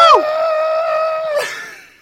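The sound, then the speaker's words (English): A person imitates a mummified man screaming: one loud, sustained high-pitched cry lasting over a second, breaking off abruptly with a short strained gasp before fading out. “And he's just in his body screaming, is...”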